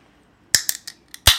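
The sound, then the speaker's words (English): A drink can is tapped four quick times, then cracked open with one loud, sharp pop and a brief fizzing hiss. No one speaks. “Okay, I tap my cans every time I'm going to open them.”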